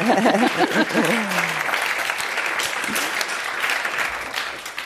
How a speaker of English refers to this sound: I sense more applause.